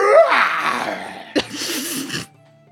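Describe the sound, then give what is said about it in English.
A voice imitates a big cat's pained scream: a loud, raspy, wavering screech that trails downward, breaks off, then returns as a second strained, hissing cry before cutting to silence. “you hear in the distance, kind of not too far away, but definitely in the woods, you hear the sound of a cat, a very large cat, screaming in pain.”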